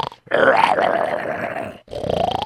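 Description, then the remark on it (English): A sleeping lion's deep, rasping growl rumbles loudly for over a second, breaks off briefly, then starts again in a second throaty growl. “And finally, both of them got down there, and the lion was sleeping.”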